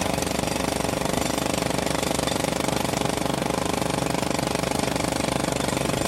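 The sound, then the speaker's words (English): A jackhammer pounds away in rapid, unbroken bursts, loud, its harsh mechanical rattle filling the whole stretch with no pauses and no voices. “There was a jackhammer going on.”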